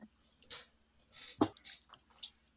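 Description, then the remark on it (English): A few soft slurps and gulps of someone sipping Whistler Brewing Winter Dunkel beer from a can in Victoria, spaced irregularly, with one sharper swallow or clunk in the middle and no talking. “I haven't had a sip yet this year's batch, so let me take a quick rip.”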